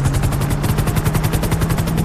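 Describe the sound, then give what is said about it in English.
A police helicopter's rotor thumps in a fast, steady chop, loud, with a low droning engine hum underneath and no voices. “He's changing his helicopter thing in midair.”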